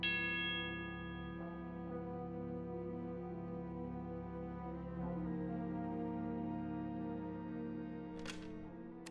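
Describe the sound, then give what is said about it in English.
A steady electronic telephone time signal tone, marking the time 11:41 3/4, holds for several seconds with a buzzy, harmonic-rich quality and ends with a brief sharp click. No one speaks. “When you hear the signal, the time will be 11:41 3/4.”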